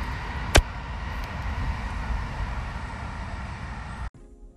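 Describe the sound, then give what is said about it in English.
A train rolls past with a steady, broad rumbling roar, marked by a single sharp clack near the start, before the sound cuts off abruptly into quiet. “So, I'll leave you with the sound of the train going past.”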